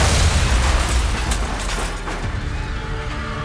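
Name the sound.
car explosion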